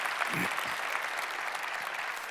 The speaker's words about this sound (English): It's what our church has been about for the last 100 years, and by God's grace, it's what we're going to be about for the next 100 years. Friends, yeah, we can clap for that.